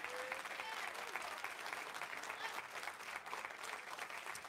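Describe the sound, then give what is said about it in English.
An audience claps their hands together for the host, the praise team and the musicians, in steady, dense applause that holds loud and even for the whole stretch, with a faint murmur of voices mixed underneath. “I want us, can we clap our hands together for this great host?”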